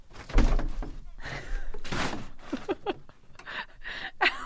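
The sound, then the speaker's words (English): A heavy thud as a person falls down, one dull impact near the start, followed by agitated voices reacting over a few seconds. “You fell down?”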